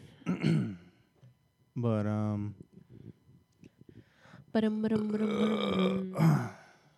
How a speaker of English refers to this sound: I'm all gassed up. I got a burp and it's just not coming out. There's one deep one. Is that? That was a piece of it for sure.